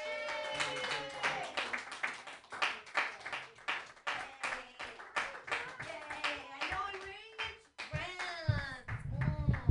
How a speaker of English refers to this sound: Okay, so I'm your last comedian. I'm just going to run around and do a couple jokes just based off of his jokes. Yay, clap for me. Yay.